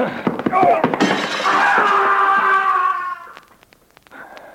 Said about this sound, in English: you knocked him through the window.